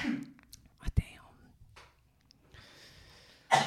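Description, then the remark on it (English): A sudden, sharp sneeze bursts out amid quiet breathy whispering and rustling, with another abrupt noisy burst at the very end. “Bless you.”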